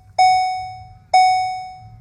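A car's warning chime dings twice at a steady pace, each a bright, mid-pitched electronic tone that strikes sharply and rings out slowly, with a low rumble underneath.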